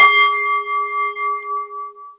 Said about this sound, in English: Are you ready for the bell? Yeah.